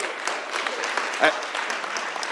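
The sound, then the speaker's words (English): Steady applause from an audience, a dense wash of many hands clapping at an even level throughout, with one brief sharper accent partway through. “Again with the clapping.”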